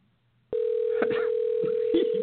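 signal or alarm, phone call ringing tone

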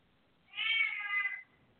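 animal, cat meowing loudly

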